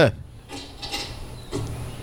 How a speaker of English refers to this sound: Closing the door.